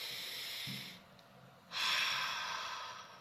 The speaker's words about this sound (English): Or if you're breathing out with an open mouth, notice the sound it makes. Listen.